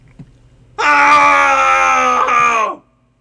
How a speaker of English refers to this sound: now, take any frustrations you've got percolating already this week, and we're going to let them out with a cathartic scream. So wherever you can get safe and don't alarm anybody doing so, go ahead and scream along with us. And here we go in 3, 2, 1.